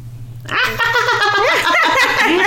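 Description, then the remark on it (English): A person attempting a hyena laugh impression gives a high, wavering cackle that sounds like a witch's laugh, rapid pitched bursts that rise and fall continuously and loudly for about two seconds after a brief quiet start. “So now that we're done trying to do hyena impressions, I like that one.”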